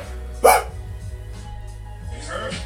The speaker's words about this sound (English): and then the dogs bark.